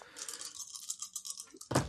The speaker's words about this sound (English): All right. So roll all those dice.